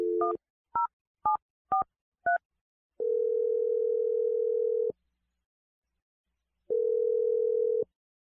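A quick run of five touch-tone dial beeps, each a short two-pitch chirp, followed by two long steady ringback tones separated by silence. No voices.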